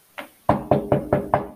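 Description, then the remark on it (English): Knocking on a door, clear: one light tap, a short pause, then five firm, evenly spaced knocks in a quick steady rhythm, with no voices. “All right, so we're going to walk to the next house and knock on the door.”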